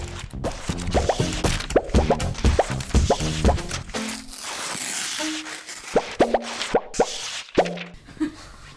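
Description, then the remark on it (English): Tarka, the office dog at Slightly Foxed, gnaws and munches: irregular wet smacks, quick clicks and plopping chews, some with a brief squeaky tone, coming in uneven bursts with no talking. “we have a little dog munching sound in the background”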